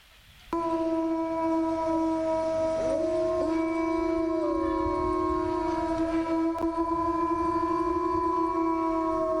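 A pack of about three or four wolves howls together, several long, overlapping wails holding steady pitches with a few sliding voices, loud and continuous after a brief quiet start, with no talking.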